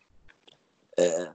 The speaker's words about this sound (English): Sorry, people. Burping. They're good burps. I'm really sorry. They're good burps.